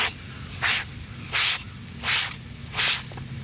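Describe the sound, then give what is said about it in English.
A hairbrush is rubbed over a bald head in four steady, evenly spaced strokes, each a short, bristly, hissing scrape, with a faint low hum underneath and no talking. “Or me running a hairbrush over my bald head?”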